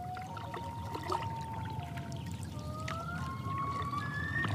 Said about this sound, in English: before long, I'm in the Allagash, the prow of my sea kayak knifing through the waters of Eagle Lake.